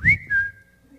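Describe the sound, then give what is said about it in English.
A person whistles an imitation of a Periscope broadcast notification alert on a phone: a quick upward-sliding high tone that levels into a steady pitch, with a couple of breathy bursts, then fades out within a second. “So every time we press the Periscope broadcast button, if people have their notification on, somewhere around the world, 10,333 phones are going...”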